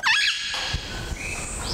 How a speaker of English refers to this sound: If you pay close attention, you'll be able to distinguish the different vocalizations of each of these parrots.